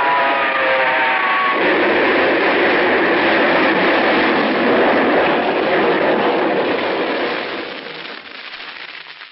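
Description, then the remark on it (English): A train engine roars loudly along the track with a heavy, steady mechanical rumble and a brief tonal whine at the start, then the noise eases off in the last seconds. “The light on the engine picked him up a quarter of a mile away, and I whistled.”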